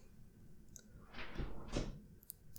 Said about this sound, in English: Is he rolling around with marbles? He's playing shuttleboard. What is that? Is that shuttleboard? Shuffleboard?